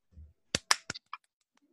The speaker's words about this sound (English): Okay, were you clapping or asking for something else? I was clapping.